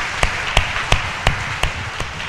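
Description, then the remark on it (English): A church audience gives a clap offering to God at a fiesta on the Feast of St. Michael, clapping hands together in a steady, even rhythm, about six sharp unison claps over a dense wash of scattered applause, with no talking. “Let's all give a God the clap offering.”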